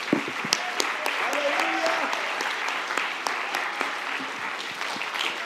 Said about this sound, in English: Let's clap for Jesus.